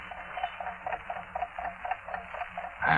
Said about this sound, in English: You get it? Yeah. It ticks all right. Question, is it a dollar watch or is it it? It's a watch, probably.